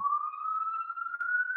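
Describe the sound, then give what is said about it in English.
A siren wails steadily on Broadway, its pitch slowly rising in one sustained tone, fairly loud and clear with no voices over it. “And there's the siren right on cue there.”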